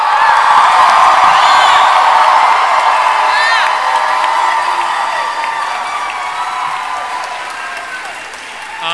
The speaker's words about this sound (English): whose first Comic-Con is this? All three of you. So I need you to really make them feel welcome. Can you give them a big cheer?